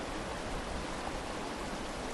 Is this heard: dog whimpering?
no